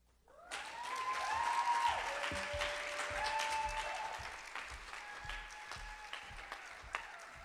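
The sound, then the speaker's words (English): An audience breaks into sustained applause, a dense wash of many hands clapping that starts abruptly and stays loud throughout, with some high whistles or cheers riding on top. “One more round of applause for Olivia, please, and keep your applause going for Jordaine Lewis.”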